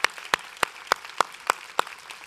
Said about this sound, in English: Can we give God just some love? Every hand clapping, can we just give it up for Jesus today?